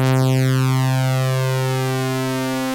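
A single sustained synthesizer keyboard tone from a plain default preset, steady and fairly loud for about three seconds, with a bright, buzzy harmonic edge and no one speaking.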